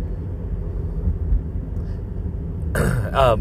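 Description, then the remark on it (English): A steady, low engine and road rumble from inside a moving car driving through traffic drones throughout, with a short burst of voice-like sound near the end. “I just gotta get through this traffic here.”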